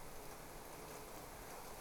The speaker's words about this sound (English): And then I want you to imagine a raindrop falling down on your head, and then another one, and more. And the rain is falling quickly now.